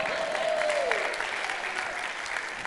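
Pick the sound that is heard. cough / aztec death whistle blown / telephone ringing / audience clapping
audience clapping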